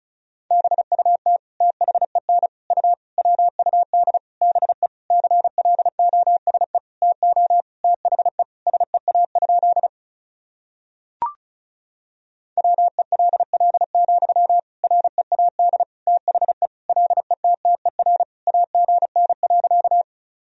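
Rapid Morse code at about 35 words per minute, sending sentences made of the 300 most common words and abbreviations, a single steady mid-pitched tone keyed in quick dots and dashes, broken by a silent pause halfway through with one sharp click.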